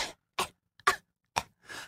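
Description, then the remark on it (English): A person theatrically fakes a consumptive (tuberculosis) cough: five short, harsh, breathy bursts spaced irregularly, with no other sound between them. “Because I do wish that I was like a frail Victorian woman coughing up blood into a handkerchief.”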